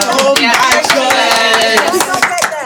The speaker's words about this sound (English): She needs a clap.